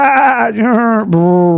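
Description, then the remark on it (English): A person imitates cattle lowing, making two loud, drawn-out moos. The first wavers, and the second is steadier and lower, with no other talking. “Quiet down, herds of 10,000 cattle.”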